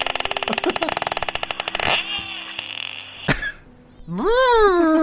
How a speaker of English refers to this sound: What does a porpoise sound like? I have no idea. Please. Yeah, do comparison. Do comparison. I want to hear comparison. Here's a porpoise.